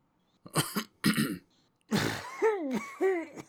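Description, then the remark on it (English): Several people by a fire have a coughing fit: harsh coughs in quick succession, two short bursts then a longer raspy fit with strained, wheezing vocal tones, fairly loud with no talking. “Everybody but Ebbs is having a bit of a coughing fit.”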